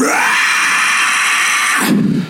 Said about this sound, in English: As you pull the chain... I'm screaming as we're pulling it, by the way, because I'm pissed.